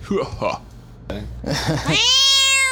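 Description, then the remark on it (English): A cat meows loudly while being held, a few short complaining cries building into one long, drawn-out wail at the end, with some talking mixed in earlier. “She doesn't like to be held like this.”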